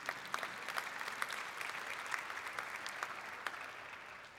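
A room full of people claps steadily for a few seconds, a dense crackle of many hands with sharper individual claps popping out, moderately quiet, with no voices.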